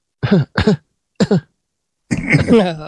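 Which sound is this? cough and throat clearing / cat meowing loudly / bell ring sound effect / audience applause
cough and throat clearing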